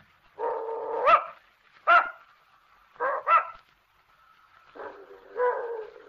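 An old female dog gives a series of short, sharp barks mixed with whiny, drawn-out whimpers and yips, coming in several separate bursts with brief pauses between them.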